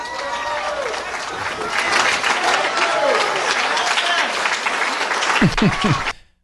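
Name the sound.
audience applause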